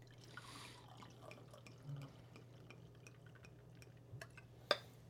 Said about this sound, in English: That's a lot you just poured me. You see the size of the bottle, though?